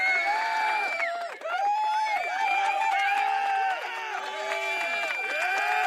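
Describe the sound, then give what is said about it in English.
Continuous applause from a large crowd, steady and loud for the whole stretch, mixed with overlapping cheers and voices that rise and fall without letting up. “Can you hear that applause? It just keeps going.”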